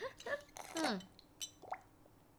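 Someone sips water from a glass: a few short, wet slurping draws with squeaky rising and falling tones, a faint clink, then quiet gaps and a small final sip.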